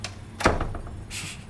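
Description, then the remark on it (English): A door swings shut with a single solid thunk, followed by a short, soft hiss of air or rustling. No voices. “Close the door.”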